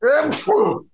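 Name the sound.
sneeze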